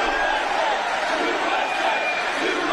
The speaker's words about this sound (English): There's the USA chant. You love hearing that.